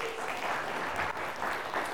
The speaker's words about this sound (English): Give Him a clap.